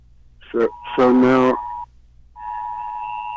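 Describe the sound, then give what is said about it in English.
An electronic alarm sounds in two long, steady high-pitched tones with a short gap between them, fairly loud, while a person briefly speaks over the start. “Now we got the alarm going off here.”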